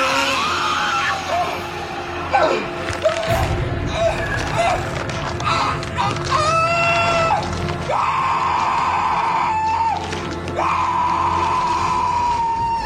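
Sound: man screaming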